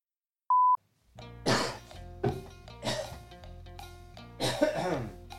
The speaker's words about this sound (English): No, I'm trying to cough without my ribs breaking more. Oof. It's like a weird cough I have to do. Like, I have to cough and then just keep pushing air